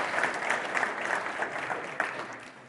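A church audience claps for a new staff member on his first Sunday, a dense patter of many hands with scattered sharper claps standing out, sustained at a moderate, even level throughout without any voices on top.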